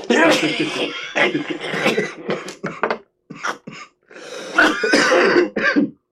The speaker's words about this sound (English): Holy shit. Sneeze break. Yeah, right? You surprised me. That made me cough.